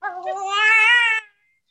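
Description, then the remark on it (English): A baby lets out a single loud, sustained scream lasting about a second, high-pitched and wailing with a slight rise in the middle, then cuts off into silence. “Have you ever had a baby screaming on your podcast?”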